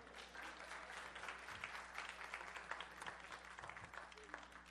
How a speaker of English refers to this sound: Steve Saldana did a wonderful job. We already clapped for him, so you don't have to keep clapping for Steve.